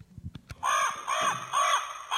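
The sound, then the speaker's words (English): A raven caws four times in a steady rhythm, each call loud and harsh, after a few soft low thumps at the start. No one speaks. “Blackbird, yeah, they call it a raven, yeah.”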